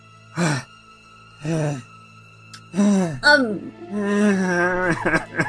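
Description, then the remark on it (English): A voice imitates heavy panting: two slow, breathy exhales, then a run of strained, voiced gasps and groaning breaths, fairly loud. “drops to his knees and starts just panting.”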